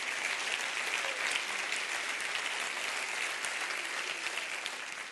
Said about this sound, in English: Clap your hands and rejoice to that right now.